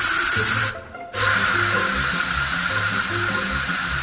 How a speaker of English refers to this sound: I really need a shower, but I don't want to wake up the kids. I'll just get one when I get home. Dry shampoo it is.